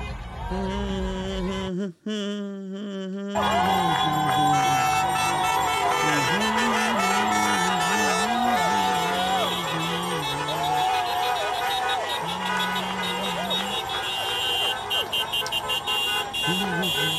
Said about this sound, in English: A lot of beeping, a lot of people hollering